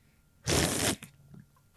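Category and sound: food or drink, slurping a drink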